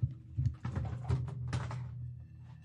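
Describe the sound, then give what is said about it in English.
An audio cable being plugged in: a few sharp clicks and plastic thunks from handling the connector over a steady low electrical hum, with no one speaking. “Plugging in a cable so I can play the trailer and you guys will be able to hear it.”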